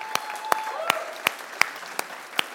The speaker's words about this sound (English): Okay, can we give the panel up here a round of applause?